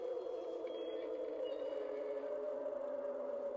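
A sustained, eerie howling tone from a Halloween sound effect drones steadily for a few seconds at moderate loudness, with a faint high whistle drifting above it and no voices.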